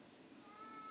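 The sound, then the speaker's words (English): A cat named Marcy meows once in a home office, a drawn-out, rising cry that grows a little louder toward the end, with no one talking. “Yes, Marcy Cat, thank you for meowing.”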